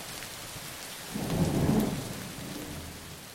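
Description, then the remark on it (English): Steady rain hisses throughout while a deep rumble of thunder swells up in the middle, peaking loudly before slowly fading back into the downpour. “You're listening to Thunder and Rain for Sleep.”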